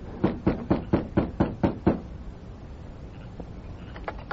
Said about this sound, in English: After making certain the sheriff was in the house alone, the masked man knocked on the front door.